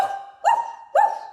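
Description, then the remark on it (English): An excited dog gives two short, moderately loud woofs about half a second apart, over a steady sustained tone in the background. “Woofing it. Bishki's getting excited.”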